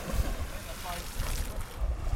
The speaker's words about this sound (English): We're right by the water, there's people zipping past on their boats